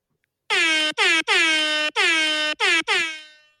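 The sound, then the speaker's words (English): A loud, brassy horn blasts in six quick bursts of uneven length, the last one held and fading out, with no voices alongside. “Take it easy over here with that horn.”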